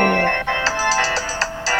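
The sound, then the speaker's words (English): A bright, electronic music beat plays steadily from a phone, then briefly cuts out and stutters when the phone is accidentally hit, before the rhythmic pulses resume, fairly loud with no one talking. “Yeah, I accidentally hit the phone. I made the beat skip, and now this shit ain't symmetrical no more.”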